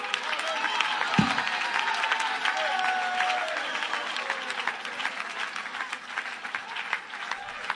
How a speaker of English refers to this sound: Clap your hands and shout unto the Lord.